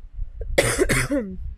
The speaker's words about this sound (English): Sorry, y'all pray for my cough. You know, I'm an asthmatic, so if, side note, any of y'all are asthmatics, you know what I'm talking about. You know, cough, that sounds like you go cough up a lung, but you're fine.